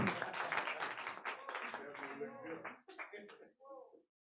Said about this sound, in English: Clap for Jesus. Hallelujah. Woo!